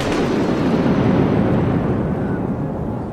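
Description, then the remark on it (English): A steady, roaring rush of wind with a gritty, sandy hiss, sustained and loud throughout with no voices: a magical dust storm conjured by a genie. “It's so sandy and windy that I can't see anything.”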